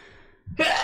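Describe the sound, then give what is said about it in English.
A single loud sneeze: a short voiced intake followed by a sharp, breathy burst, right after a brief moment of quiet. “Bless you.”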